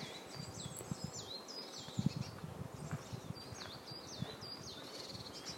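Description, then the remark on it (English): A bird sings repeated high, swooping whistled phrases, fairly faint, while soft crunching footsteps and rustling sound underneath, on the Watchman Trail hiking path in Berchtesgaden. “I'm hoping you can hear that bird song.”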